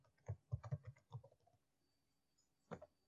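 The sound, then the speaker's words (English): A quick burst of keyboard typing as a person enters an email address and password to log in: several rapid clacking keystrokes, then a pause and a final pair of key presses. No one speaks. “We are logging in here by putting our mail address and obviously the password.”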